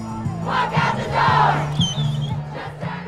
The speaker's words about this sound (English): As you can hear, there were thousands of people in a very partying mood. Some had pots and pans, they were banging. Other people were drinking from bottles of champagne, and there were lots of homemade signs and spontaneous dancing.